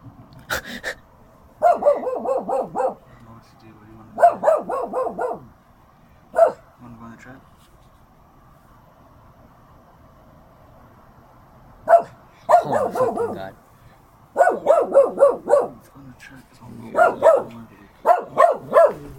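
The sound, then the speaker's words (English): A dog named Rosie barks loudly in quick clusters of yaps, with short quiet pauses between the bursts before the barking starts up again. “Can we shoot the dog?”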